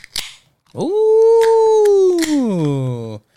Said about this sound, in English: This podcast is brought to you by Red's Wicked Apple Cider. Yeah, this better be good. Crack the top. Let's see if y'all can hear the crack.